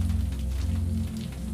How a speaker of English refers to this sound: The somnolent sounds of rain and the white noise of the dryer carry on.